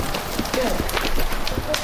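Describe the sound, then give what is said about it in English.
Muffled hoofbeats of a horse trotting in quick turns in a huge arena filled with sawdust, a quick steady rhythm of dull thuds lasting throughout, with a voice talking over them. “Grace and Dove trot into a huge arena filled with sawdust”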